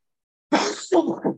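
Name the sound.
sneeze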